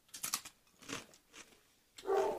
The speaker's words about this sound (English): There's a dog. Yeah, if you can hear that, that's Boone.